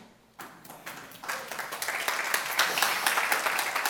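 A crowd breaks into applause, starting with a few scattered claps and swelling into steady, dense clapping that grows louder and fuller over several seconds.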